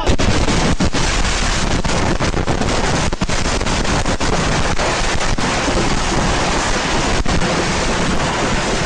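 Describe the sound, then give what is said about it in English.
A nonstop barrage of fireworks exploding in a driveway, set off when the spark from the first firework ignited all the others, blowing up a car: a dense, roaring crackle that never lets up, punctuated by occasional sharper bangs. It stays loud and saturated throughout, with no voices. “Yeah, the spark from the first firework that was set off ignited every other firework in the driveway, blowing up their car and probably some of the people.”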